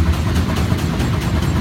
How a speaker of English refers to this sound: And at this point, that's just the engine just windmilling. It's just obviously yeah. The engine is off at this point. Right. By this time, they've obviously gone through all the emergency procedures, shut the engine down.